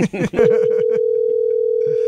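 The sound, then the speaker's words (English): Brief talking at the start gives way to a steady, loud telephone tone that holds unbroken to the end, like an outgoing call to a watch ringing on the line with no answer. “Well, we'll try and get him on the phone a little bit later.”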